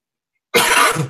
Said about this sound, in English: April, help me, I'm coughing.